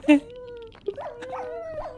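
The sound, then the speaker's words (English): Wolves whimper and whine in a video game, high and tonal, starting with a sharp yelp then sliding into repeated wavering cries, clear over a faint background. “I hear wolves.”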